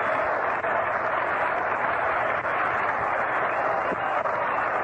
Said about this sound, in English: Two men have been retired, and push him up, Tony Nazari, and listen to the applause he gets.